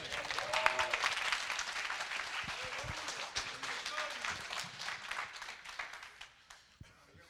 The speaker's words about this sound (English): Come on, give the Lord a great clap offering, amen.